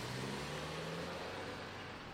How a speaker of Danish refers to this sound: De starter bilen og kører ind på politigården.